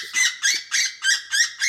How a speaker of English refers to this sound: a lot of times I will start off with just a woodpecker distress. I like the woodpecker. It's my favorite bird distress. It's my most killingest sound for bird calls.